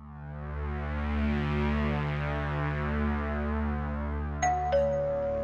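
A sustained, droning musical tone fills the background, then a two-note ding-dong doorbell chime rings out clearly near the end. No one speaks.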